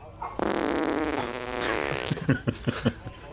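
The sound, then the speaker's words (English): A long, loud fart with a buzzing, rippling tone that holds steady for over a second, then breaks into a string of short sputtering bursts before fading out. “If Isidore can conjure tiny lightning for electricity, he can certainly conjure some gas.”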